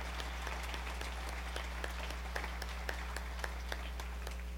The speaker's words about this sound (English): While they're coming up, if we have any high school or college or other kinds of graduates, would you stand up and allow us to clap for you and your hard work and achievement to get done? Thank you. Very good.